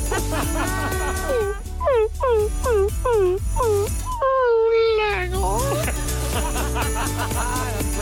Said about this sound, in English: Brilliant. It's a real dog. I believe it, yeah.